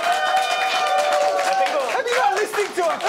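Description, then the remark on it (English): An audience breaks into applause, a dense patter of clapping mixed with loud cheers and whoops, steady for about three seconds, voting by applause on whether jokes are more important than journalism. “All right, so let's raise your hand, or actually, because it's a podcast, by a round of applause, are jokes more important than journalism?”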